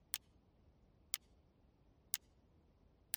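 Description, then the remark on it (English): A clock ticks steadily, four sharp, bright clicks spaced about a second apart over a faint, quiet hum. No one speaks. “It's like as I sit here, I can hear the ticking of a clock.”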